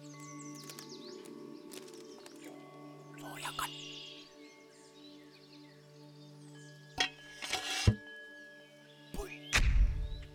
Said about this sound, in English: At 4 a.m. on June 25th, 1950, the land of the morning calm was shattered by the sound of mortars and artillery opening up across the 38th parallel that divides Korea into north and south.